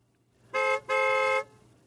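A car horn honks twice in quick succession, a short blast followed by a longer one, loud and steady in pitch with a bright, buzzy tone over a faint low hum.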